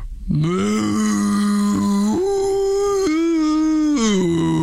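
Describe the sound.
A person imitates a cow with one long, drawn-out moo, a steady low voiced tone that steps up in pitch midway and drops again at the end, loud and alone.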